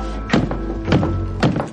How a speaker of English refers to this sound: I love the way he knocks Chuck's head against the wall. It's hilarious.